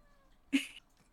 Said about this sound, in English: Look at this fucking cat!